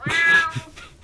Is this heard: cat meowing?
yes